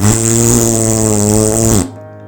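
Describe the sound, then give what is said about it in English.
A single long, buzzy fart, loud, holds a steady droning pitch for almost two seconds before cutting off abruptly. No one is talking. “You take your cigarette and light your farts on fire.”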